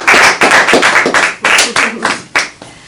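A loud round of applause from a group, many hands clapping in a dense, crackling patter with uneven surges that gradually thins out and fades by the end.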